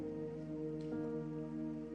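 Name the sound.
rain falling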